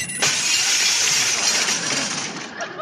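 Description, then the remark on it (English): A door is slammed and the newly installed glass pane in it shatters loudly, the crash giving way to a long spray of tinkling shards that rains down for a few seconds before fading. “But don't slam the door because I just put a new glass in it and it might break.”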